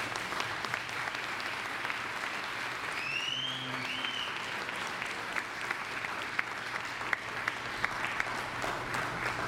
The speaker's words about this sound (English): Join me in a warm round of applause for Mr. Toby Hemenway.